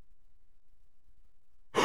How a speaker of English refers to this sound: The cough? Yeah.